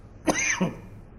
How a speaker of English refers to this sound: I am really tired of this cough.